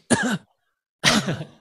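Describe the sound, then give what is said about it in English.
Two harsh, voiced deliberate coughs from a person, separated by a brief pause, each a short rough burst with no other talk around them. “You just slow down with every cough.”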